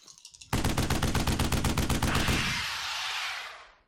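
Four dice are rolled in a loud, rapid clatter of sharp clicks lasting about two seconds, then a softer rushing rattle that fades away. No one speaks.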